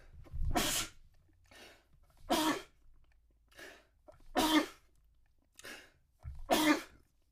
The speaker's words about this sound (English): Fun fact about me, when I sneeze multiple times, and it fucking, now you get that weed cough, and you feel like your body shaking and all that other stuff. That's what it feels like when you sneeze multiple times in a row